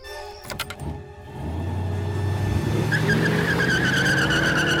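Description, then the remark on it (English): A car engine revs hard as tires squeal and skid in long, rising screeches while the car fishtails wildly around a corner and veers into oncoming traffic, loud with no voices present. “Leonard fishtails wildly around the corner. He veers into oncoming traffic.”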